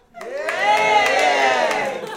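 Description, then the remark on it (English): A live panel show audience erupts in loud, sustained cheering and shouting for the anti-messaging side of a debate, a dense wash of many voices that swells quickly and holds for about two seconds with scattered higher whoops on top. “And give us a cheer if it's anti-messaging.”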